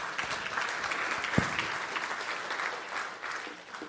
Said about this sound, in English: Yeah, go ahead. You can clap.